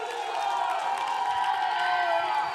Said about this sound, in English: Shout and clap to God.